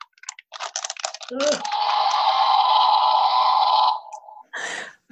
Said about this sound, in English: I'm going to make my T-Rex roar now. You ready? Ah, come on, roar.